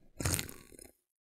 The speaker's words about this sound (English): Diet Coke me softly. So delish. Listen to that first sip. Here's that first sip feeling. You hear that? Did you hear that? Wait, hear the fizz.